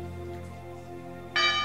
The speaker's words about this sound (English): God bless you. Come on. Good. That's what we live for, is to ring that bell.